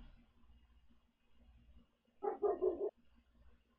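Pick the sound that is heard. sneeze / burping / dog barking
dog barking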